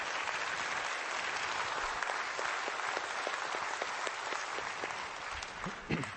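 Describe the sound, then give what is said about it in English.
Sustained audience applause fills the whole stretch, a dense wash of many hands clapping steadily at moderate volume, with a few sharper individual claps standing out near the end. “So I would ask that you express that to them in your own way, if that is to maybe share a letter with them of something, or perhaps applause at this very moment.”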